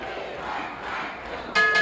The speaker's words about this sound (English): The capacity crowd chanting, "We want Backlund."